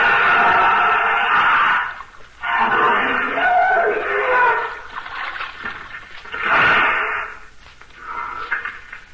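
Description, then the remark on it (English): Heavy water splashing and sloshing in several loud surges as an elephant wades and thrashes in a river while being washed, with brief pauses between bursts. “Teela, go to the bank, or indeed I will have to punish you. Get out of the river.”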